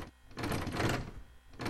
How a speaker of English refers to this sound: He said to pound on the door. I must get out!